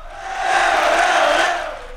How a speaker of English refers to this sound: And I thought I'd bring us in with a footy crowd because it's been a while.